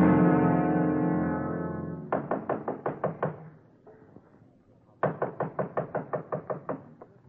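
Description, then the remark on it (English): A sustained musical chord fades out, then two loud bursts of rapid knocking on a door, about six raps, a pause, then nine more in quick succession. “Mother, I can open the door, can't I?”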